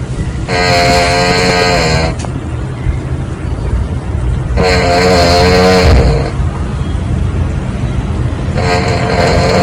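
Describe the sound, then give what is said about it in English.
A man snores loudly one night in a shared accommodation room, in slow, regular cycles: three long, buzzy, rasping inhales about four seconds apart, with a low rumbling breath between them and no talking. “And then to top it all off, someone in my room, who I will not name and shame, this was him snoring one of the nights.”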